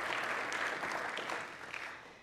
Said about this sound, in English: Amen. Hey, you can clap. I hope he hears that.